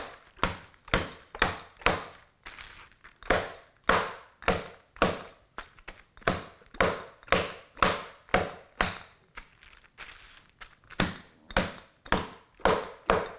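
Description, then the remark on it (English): A large chicken breast being pounded flat with a bottle toward a quarter inch thick: a steady run of dull, heavy thuds, roughly two per second, each a sharp hit that quickly dies away, with no talking. “I was pounding away with a bottle of something.”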